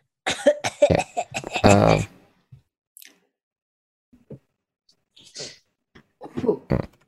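A loud burst of several rapid coughs ending in a throaty, voiced hack, followed by near-silence broken only by faint clicks and brief rustles.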